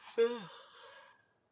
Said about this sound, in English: I'm sorry for the yawning. Just like I said, when you work overnights, man, I'm like, I'm freaking tired.